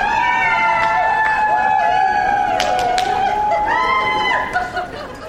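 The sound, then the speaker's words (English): A large family group in Santa hats cheers and whoops loudly and excitedly at an airport arrivals area in Ireland as the doors open. High voices overlap in sustained shouts with a few sharp claps, fading slightly toward the end. “A large family group in Santa hats goes crazy when the doors open and everyone at the railings turn to look and see how to welcome someone home with gusto.”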